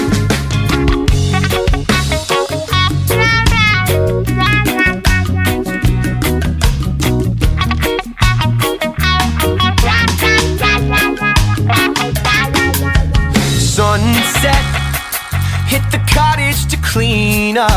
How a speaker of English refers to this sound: And at the end of this, right on the word sunset for verse two, there's a really great tremolo on the guitar effect there. It's really cool. That ushers in verse two.